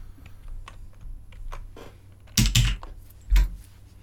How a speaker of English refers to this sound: Confident keyboard taps. No, it's just saving. Yeah. That's what it is.